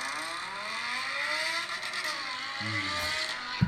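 A sports car's exhaust roars steadily in a video, its engine pitch sliding and shifting as it revs, with a deeper rumble surfacing near the end. No one speaks.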